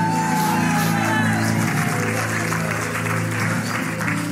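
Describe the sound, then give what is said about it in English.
An audience, including people on their feet in a second sanctuary, claps and shouts praise to God together in a dense, steady roar of applause and raised voices that stays loud for about four seconds, with a sustained tonal drone underneath. “Clap your hands, all you people. Give God a shout of triumph.”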